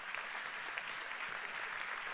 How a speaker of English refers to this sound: that is for God, the applause there.